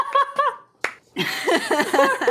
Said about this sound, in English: Are you applauding yourself? I'm applauding the both of you.